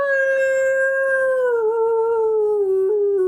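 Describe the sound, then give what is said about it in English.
A voice imitates a motorcycle's horn with a whale-like call: one long, loud, moaning tone that glides slowly downward for a few seconds, alone with no talking. “You hit the horn and it goes...”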